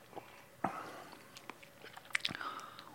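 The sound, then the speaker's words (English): Quiet mouth sounds of someone sipping a drink: a soft slurp, then a few wet clicks and a gulp as it's swallowed, with no talking. “I'm gonna just try another sip now.”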